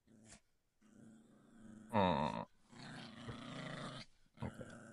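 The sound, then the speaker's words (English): Someone imitates a small rat-like dog growling: a low rumbling snarl that rises to a sharp, loud yap-like burst midway, then keeps growling steadily with a final short snap, alone. “And a small rat-like dog appears at the end of this hallway and starts growling at you.”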